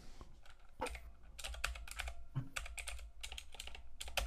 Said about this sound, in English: Sorry, folks. I know you guys love the sound of my mechanical keyboard, so.